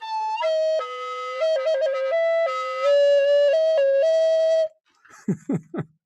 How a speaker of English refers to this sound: And this is a recorder, so if you have that, all right, here we go.